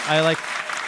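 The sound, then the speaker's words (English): A brief burst of canned applause played by pressing an applause button, a dense wash of clapping that stays steady for under a second, opening with a short tonal cheer-like note over the clapping. “So proud I'm even going to hit this applause button right here.”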